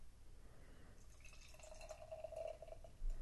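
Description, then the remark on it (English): Ale brewed with almonds and cherries trickles and splashes into a glass in a steady pour, with a faint rising pitch as it fills, lasting a couple of seconds before ending with a soft clink. “Oops, I guess I should pour myself some.”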